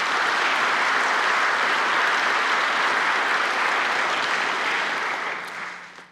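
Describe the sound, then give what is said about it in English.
A crowd of Georgia Baptists applauds in praise of Southern Baptist missionary work funded by the Lottie Moon Christmas offering, with dense, steady clapping that holds loud and even for several seconds, then tapers off near the end. No one speaks over it. “Can we give a hand clap of praise for that?”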